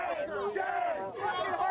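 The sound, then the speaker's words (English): A crowd of Black Lives Matter protesters chants together at a Trump rally, many raised voices blending into a loud, steady, sustained roar with rising and falling shouted tones. “So you can see here, you're at a Trump rally, all right? There's obviously Black Lives Matter people there that are chanting.”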